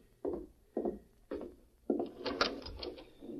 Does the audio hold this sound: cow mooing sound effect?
no